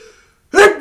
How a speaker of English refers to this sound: Bless you. Gotta get a sneeze button or something.